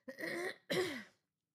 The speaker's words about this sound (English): I'm going to have to clear my throat, and I'm sorry.